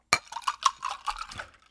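Glasses of alcoholic drinks clink together in a toast: a sharp first strike followed by a quick, uneven series of bright, ringing chimes that fade out over about a second and a half.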